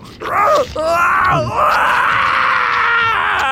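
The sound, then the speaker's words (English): A loud, drawn-out anguished screech with wavering, strained pitch, breaking briefly before rising into a sustained agonized wail, intense, with no speech around it, from a creature being devoured from the inside. “He screeched in agony.”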